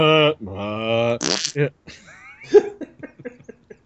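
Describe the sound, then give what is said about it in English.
A loud, drawn-out belch with a hiccupping catch in it as someone tries to belch and hiccup at the same time, followed by a short rough burst and some quieter mumbling vocal noises. “Trying to belch and hiccup at the same time.”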